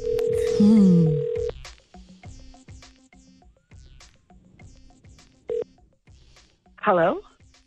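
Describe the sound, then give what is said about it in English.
A phone call being placed to a winner's number: a burst of dialing tones, then steady repeated ringback tones at a moderate level, with a short chirpy sound near the end and faint talk underneath. “I have the winner's number dialed. Let's see. Pick up the phone.”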